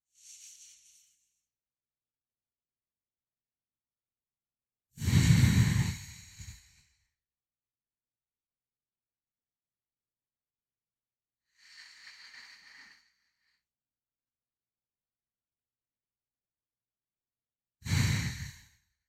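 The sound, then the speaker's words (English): Slow, deep box breaths drawn in for a count of five, held, and let out for five, each separated by several seconds of silence; one exhale is a loud sigh, while the others are softer and airier. “I'll give you some silence and some space to do that five box breath. Five breaths in, holding at the top, releasing for five, and then holding for five.”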